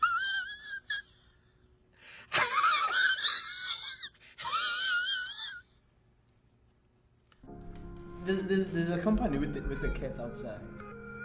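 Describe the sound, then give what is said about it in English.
Cats yowl outside in long, wavering, high-pitched wails, a few drawn-out cries over several seconds, followed by a pause and then muffled voices and clatter. “There's a company with the cats outside.”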